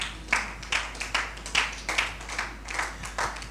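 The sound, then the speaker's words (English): An audience claps together in a steady rhythm, roughly two to three sharp claps per second, moderately loud and sustained, with no clear talking over it. “If you want to clap, do it from your heart.”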